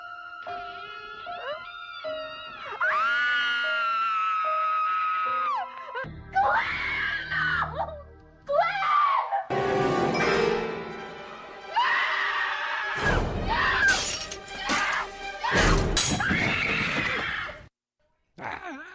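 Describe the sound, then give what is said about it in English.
A rapid montage of horror-movie screams, one shrill wail or shriek after another, loud, spliced together with abrupt cuts and changing voices, no talking in between. “None of our Halloween movies suffered the fate of a horror scream montage a la Jamie Lee Curtis.”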